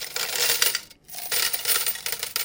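A dense shower of coins dropping and clinking together, bright and metallic, with a brief pause partway before a second run of jingling. No voices.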